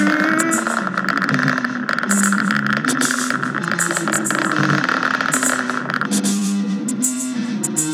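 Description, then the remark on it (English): A loud, continuous engine roar rumbles for the whole stretch, a dense droning mix with rattling, buzzy overtones and no pauses: a rocket truck's engine roaring as the truck lifts off the ground and launches at full power. “Our truck has successfully launched into the outer reaches of the galaxy.”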